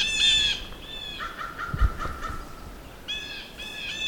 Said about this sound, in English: That's an interesting crow call.